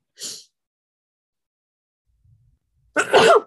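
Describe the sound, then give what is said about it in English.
A quick sharp breath, then a couple of seconds of near silence before one loud, explosive sneeze bursts out at the end. “I'm about to sneeze.”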